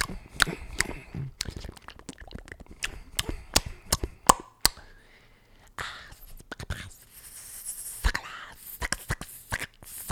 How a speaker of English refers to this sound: Because, dude, who wants to be listening to a dude or a girl chewing for 30 minutes?